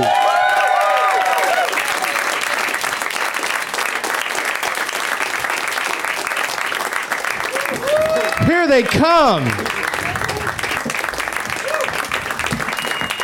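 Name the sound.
audience applause and cheering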